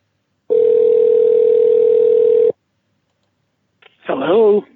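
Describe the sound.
A steady, unbroken telephone dial tone hums for about two seconds as a call is placed, then cuts off into silence before a voice briefly starts speaking at the end.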